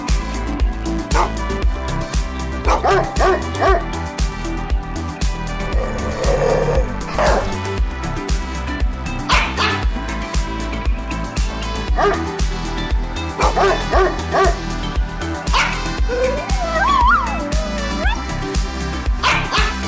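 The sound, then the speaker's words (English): A dog-barking jingle: a steady, loud musical backing with repeated bursts of barks, yips and a whimpering whine scattered throughout, no talking. “Maybe we need a dog jingle to put in here to sort of fill the dead air.”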